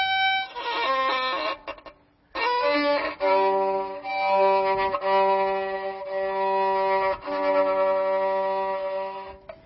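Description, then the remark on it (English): A violin played alone for an audience, with a rough, strained tone: a few quick wavering notes, a brief pause, then long held notes that slide and waver in pitch, fairly loud throughout. “Would you like me to play something for you?”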